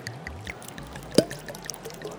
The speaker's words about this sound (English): So, you know, before I get too far in this line, let me actually duck out for a second over to this water fountain, and I'm just going to pour these out.